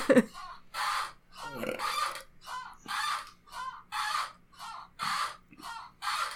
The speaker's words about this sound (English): There might be a lot of chair squeak in this for me, and I'm sorry about that. I'm testing it now. Why don't you just isolate it for a second?